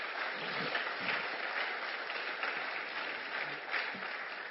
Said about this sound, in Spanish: So can we just take a second all together to clap and celebrate what God has done? ¿Podemos tomar un momento para aplaudir todos y celebrar lo que Dios está haciendo?